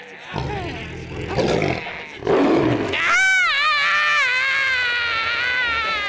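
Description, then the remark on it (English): A man, screaming on demand as a staged act, lets out a long, loud, high-pitched scream that wavers and holds for several seconds, preceded by a few shorter strained, groaning cries. “One big final scream.”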